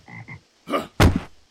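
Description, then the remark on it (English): A frog kept near a bed croaks four times in quick succession, two short soft croaks followed by two louder, raspier ones, with no talking over them. “Frogs are associated with darkness and ill timing.”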